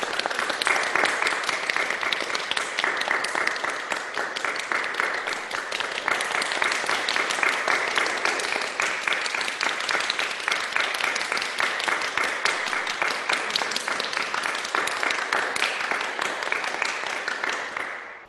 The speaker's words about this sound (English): During this time, if we were in church, we would have thunderous applause. But on Zoom, let's do this.